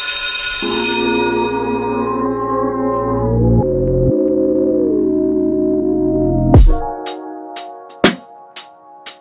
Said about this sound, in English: Ring the bell. Peace. Hey, that'll be cold to have another bell.